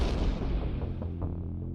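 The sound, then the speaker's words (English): The first explosion, deep and heavy, booms and rumbles through the street, loud, its low roar rolling on with faint debris crackles as it slowly fades. “And as the two of you sort of like sit in this awkward religious moment together, that's when the first explosion rocks the street.”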